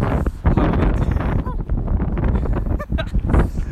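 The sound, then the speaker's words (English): Strong wind roars and buffets against the microphone throughout, a constant low rumble with gusty surges, and faint snatches of a voice briefly poke through, while crossing the Bridge of the Gods. “Oh, it's windy too. It's so windy.”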